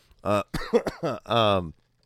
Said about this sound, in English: Excuse me, to the point where what a timed cough there.